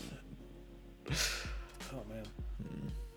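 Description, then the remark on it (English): A tired person yawns back-to-back: a sudden breathy gasp swells into a drawn-out, wavering voiced groan, followed by softer sighing exhalations over a low background hum. “Oh, I'm flagging. Those back-to-back yawns.”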